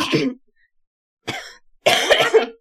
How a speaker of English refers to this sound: I actually need to clear my throat.